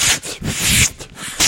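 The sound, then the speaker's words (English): Paper being ripped up in a few quick, rasping tears, one longer stretch among shorter bursts, fairly loud with no voices. “I'm going to rip it up.”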